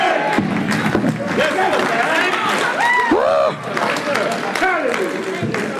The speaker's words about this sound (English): Before you know anything, they're just shouting all by themselves.